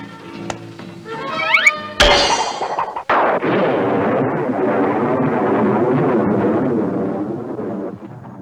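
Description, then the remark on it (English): Thunder clap sound effects in a movie: a sudden loud crack, then a second sharp clap about a second later that rolls into a long, heavy rumble that lasts to the end. Brief rising tonal sweeps come before them. “Yeah, and it's kind of funny that they use all those thunder clap effects in there, Michelle, because the entire movie was shot during the day.”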